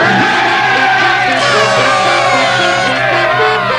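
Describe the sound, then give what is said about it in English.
A loud, continuous wall of crowd cheering and celebratory whooping, with many overlapping shouts and yells sustained throughout, without pause. “That was your cue for the fanfare and celebratory music and cheering and whatnot?”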